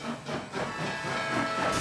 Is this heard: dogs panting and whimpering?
no